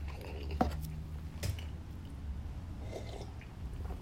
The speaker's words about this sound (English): Excuse me while I take a bite of my pepinini sandwich.